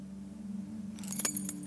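A set of keys jingles briefly, a bright metallic rattle breaking in partway through over a steady low hum, with no voices.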